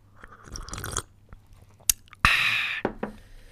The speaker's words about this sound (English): I only had a quarter of my coffee. Let me have another sip.